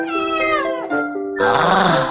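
A cat meows, two drawn-out tonal mews followed by a rougher, breathier cry, fairly loud and with no one talking.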